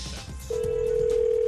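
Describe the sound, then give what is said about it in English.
A telephone line tone on a prank phone call made as Tony Soprano kicks in after a brief moment of background noise, a steady, unbroken electronic hum that holds loud until the end, with no one speaking. “Tony Soprano is about to phone tap this person.”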